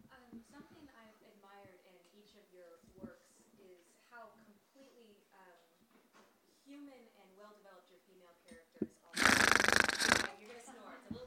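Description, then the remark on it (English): A man talks for several seconds, then lets out a loud, harsh, rasping growl lasting about a second, a vocal imitation of a Bengal tiger, followed by brief quiet. “I'm growling. Man, yeah, that's the growl of the Bengal tiger and the demon dog. That's not a snore.”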